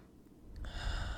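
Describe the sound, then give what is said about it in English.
A single deep breath drawn in, a soft airy rush that swells and grows louder through the second half, with no talking. “And really breathe into your body, breathe into the moment so you're nice and grounded, because that's really, really important as we step into the middle way, that we are grounded in our own truth, grounded in our own presence, always.”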